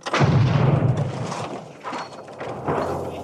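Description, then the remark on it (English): A loud explosion of a pipe bomb planted under the driver's seat of a car bursts out at once, a deep booming blast that rumbles and crackles as it slowly fades, with a couple of smaller thuds trailing after. No one speaks. “But Backhouse never expected his wife to survive the explosion.”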